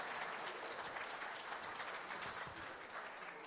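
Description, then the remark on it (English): An audience applauds in a dense, steady wash of many hands clapping, holding at an even, fairly loud level throughout with no voices breaking through. “Let's give her a round of applause, folks.”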